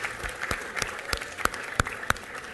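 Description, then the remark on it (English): A brief, thin round of applause for women during a talk on the history of beer brewing: scattered sharp claps, only a few hands, with louder isolated smacks toward the end over a steady low murmur. “So let's have a round of applause, girls.”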